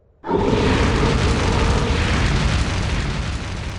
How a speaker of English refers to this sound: Drogon's fire engulfs the table. The crowd leans away from the heat, Daenerys herself noticeably flinching away from the flames.